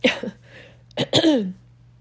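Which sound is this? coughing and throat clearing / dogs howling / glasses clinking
coughing and throat clearing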